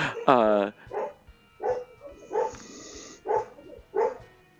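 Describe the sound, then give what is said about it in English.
Livestock guardian dogs bark protectively: one loud bark, then a steady run of four or five more barks at roughly even intervals. “Oh, you can hear our guardian livestock dogs are protecting.”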